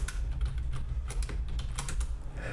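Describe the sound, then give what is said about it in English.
Rapid, uneven clicking of computer keys as someone types a short search for "MARSOC" on DuckDuckGo, the sharp taps landing in quick bursts over a steady low hum, with no one speaking. “We're on DuckDuckGo right Mars now. Because so we like private engine searching.”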